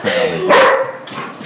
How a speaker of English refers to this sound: The dog's going to answer that question.